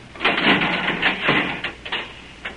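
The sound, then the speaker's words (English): A door is pulled open with a rough, scraping grind that surges in a few uneven pushes before trailing off into a final short scrape. “Wait till I open this door.”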